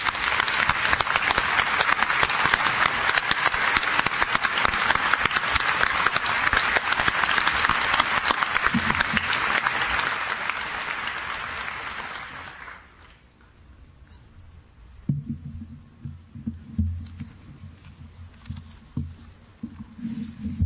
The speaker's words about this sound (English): I would now ask all of our honorary degree recipients to stand together once more. I would ask our graduates and guests to join me in applauding their outstanding accomplishments.